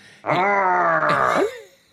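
A loud, drawn-out howl of defeat from Superman, holding one strained pitch for over a second before breaking and dropping away into a fading groan.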